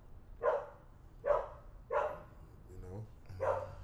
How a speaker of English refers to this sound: Hear that? We got them dogs out here.